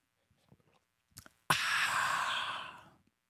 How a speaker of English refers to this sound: Hold on. Here comes your refreshing coffee sip of the day. Are you ready?